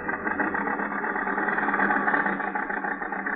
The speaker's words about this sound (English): The storm is increasing now. The little car lurches and bounces in its fight to keep the center of the highway.